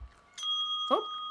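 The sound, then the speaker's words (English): A single bright bell ding, rung over the phone, rings out and hangs in the air with a steady, sustained tone, while a brief meow-like chirp briefly cuts in partway through. “I dinged over the phone.”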